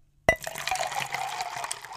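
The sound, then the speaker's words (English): A single bright glass clink rings out in a toast, followed right away by a steady splashing pour of liquid that runs on for nearly two seconds, with no voices. “Well, let's go ahead and drink to that. Cheers. Drink to that. Cheers. To the dewy.”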